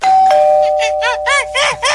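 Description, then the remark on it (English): A doorbell rings: a steady electronic tone, then five quick warbling chime bursts in a regular rhythm, getting fuller toward the end. Fairly loud, with no talking. “The only way to get me to answer my door for sure is if I hear this.”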